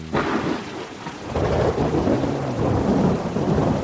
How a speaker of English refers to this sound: It's thundering out bad.